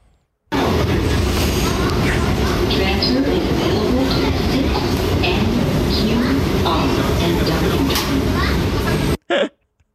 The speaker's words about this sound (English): Just another day on the J train.